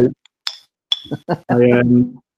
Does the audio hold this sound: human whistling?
no